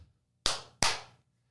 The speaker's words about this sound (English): We are rolling. Let's get the clappy claps going. Okay.